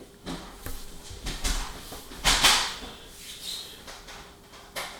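door being locked

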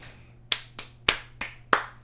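small group clapping

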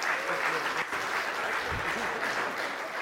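audience applause

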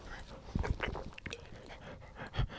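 dog panting heavily

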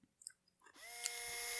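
power drill running

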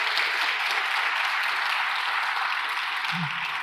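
audience applauding

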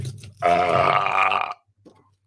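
burp

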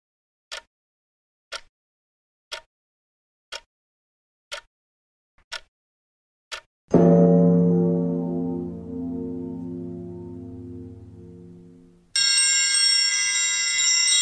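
bell ringing

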